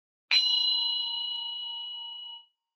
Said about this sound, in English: So a little sounding of zen bell.